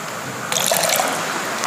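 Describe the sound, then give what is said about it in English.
Water saved from last year's water communion is poured steadily into a vessel at a water communion, a bright splashing trickle starting suddenly after a short quiet moment and continuing without any voices. “We begin by pouring a little bit of water that was saved from last year's water communion.”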